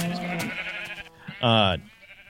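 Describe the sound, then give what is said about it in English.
A single sheep in a video game bleats loudly, a short wavering baa lasting under half a second, following a muffled stretch of indistinct background noise. “You can see he has different levels, have different color sheep in them.”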